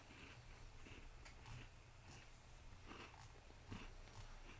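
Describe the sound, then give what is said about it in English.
Quiet munching on a crunchy Tim Tam chocolate biscuit, with irregular soft crunches and chewing over a steady low hum, and no one talking. “You munching a Tim Tam over there.”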